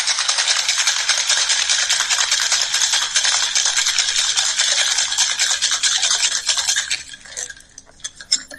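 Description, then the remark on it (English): A cocktail shaker holding a drink made with brown sugar and cinnamon vodka is shaken hard for about seven seconds, ice rattling in a fast, steady, bright clatter, then it stops, leaving a few light clinks. No one speaks. “You shake it together.”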